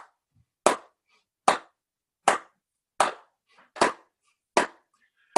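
A church audience claps together in unison on a 2-4 beat, seven or eight sharp, loud claps at a steady, even tempo, with no voices or music between them.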